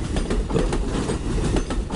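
A train rolls past, a steady low rumble broken by regular clickety-clack beats as the wheels cross rail joints, loud and continuous with no voices.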